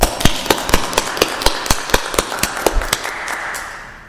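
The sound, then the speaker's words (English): An audience applauds with a loose scatter of sharp, crisp hand claps over a hissy wash, irregular but steady, gradually thinning and fading away toward the end. No one speaks. “Brothers and sisters, with the saints and angels in heaven and with Jesus, would you please join me in giving her and her church a round of applause?”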